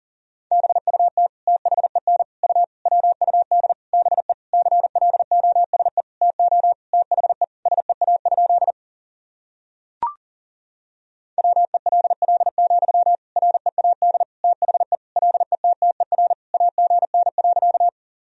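Rapid Morse code at about 40 words per minute, sending sentences built from the top 300 words and abbreviations: a single steady mid-pitched tone keyed in quick dots and dashes. Two long runs are split by a pause with a brief click, and no voices.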